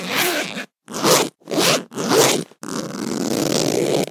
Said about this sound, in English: Hang on, there's a little wallet in here. Let me just unzip it.